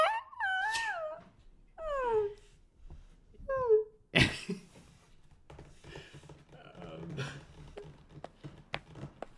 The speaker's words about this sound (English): The fuck, did I just see a dog run out of the house? He's running around the living room. Oh, God. Oh. Hey, get him off the couch.